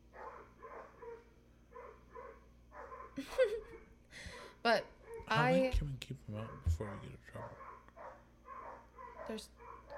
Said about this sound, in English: Sorry, the dog sees something. I'm guessing a deer. I don't know, one time it was a skunk. Might be a fox. But it's still there because Bones is barking.